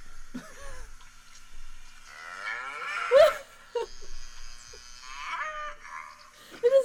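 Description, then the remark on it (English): Several drawn-out cow moos follow one another, loud and bellowing with a strained, raspy edge, one call rising sharply near the middle before more long lows trail on. “That's what cows sound like.”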